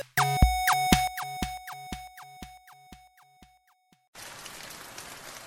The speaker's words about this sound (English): It's one of those quiet rainy days when not much is happening